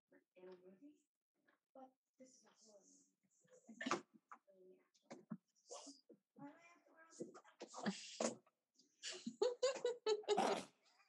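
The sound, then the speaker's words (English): A sharp sneeze bursts out among bouts of chatter and noisy vocal sounds, with people talking around it. “Bless you. Thank you.”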